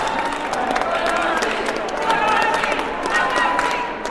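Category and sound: crowd, audience applause and cheering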